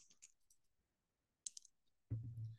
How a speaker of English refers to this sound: So I got my Avengers dice. I'm going to roll for myself first.